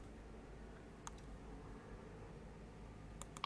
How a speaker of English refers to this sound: It's just very annoying that I have to just keep clicking over and over for almost 20 minutes. 20 minutes, guys.